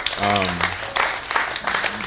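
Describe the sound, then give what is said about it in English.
A church audience applauds what it has raised for its building fund, a steady burst of many hands clapping in a dense, crackling wash throughout, with a brief sustained voice or cheer rising above it near the start. “By the way, give you guys a hand of applause.”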